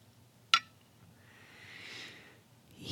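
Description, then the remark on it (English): Coffee pouring from a Chemex into a glass mug, the first pour of the new year: a sharp glassy click, then a soft, airy trickle that swells and fades over about a second, with no one speaking. “It's the first pour of the new year.”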